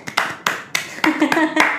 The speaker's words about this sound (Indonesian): Ya, tepuk tangan dulu.